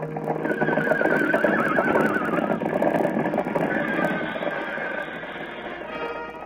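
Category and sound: animal, horse neighing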